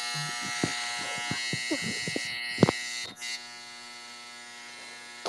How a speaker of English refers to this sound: Are you at the barber? You getting a haircut? No, no, it's the washing machine. Are you doing laundry? I'm in my unfinished basement on the concrete floor.